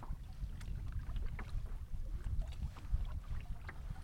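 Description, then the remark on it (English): Canoe paddling south toward Agnus across a big lake: a steady low wash of water with scattered soft splashes and drips as the paddle dips, over a constant rumble of wind, no voices. “But even though Agnus is a straight shot south, paddling such a big body of water becomes disorienting after a while.”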